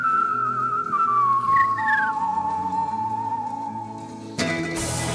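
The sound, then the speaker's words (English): A world champion competitive whistler whistles a clear, sustained melodic line with sliding pitches and a few quick upward flourishes, fairly loud, over a soft low background, ending abruptly in a burst of noise. “…. Ah. …. Whistler?”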